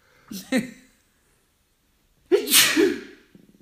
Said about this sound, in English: Oh, dear. I love that still moment before the sneeze. Oh, dear.